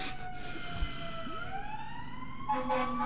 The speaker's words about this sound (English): It's not the ice cream truck, people. We're used to the ice cream truck coming by at this time. It would be the fire truck.